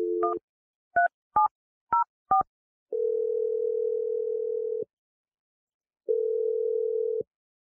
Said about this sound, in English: Here we go. I'm dialing the number right now.